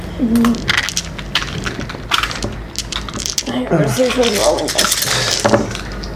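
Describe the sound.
Two small hard six-sided dice clatter and click repeatedly, a busy rattle of rapid knocks as they are handled and rolled, with brief murmured voices underneath.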